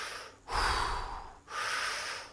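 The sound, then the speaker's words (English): A voice imitates heavy breathing: two loud, rasping breaths one after another with a brief pause between, and no talking. “And then all of a sudden, he just turns around, holding on that cable, looks at the water, and starts doing this heavy breathing.”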